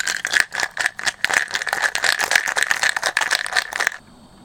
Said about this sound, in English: I'm going to shake up our next drink, and we'll describe it then, okay?